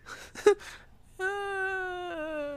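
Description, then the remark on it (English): A person imitates a zombie toddler's moan in a creepy, childlike voice: a few short broken whimpers, then a long sustained wavering wail that slowly sags in pitch, fairly loud. “It sounded like a noise that like a zombie toddler would make in a scary movie.”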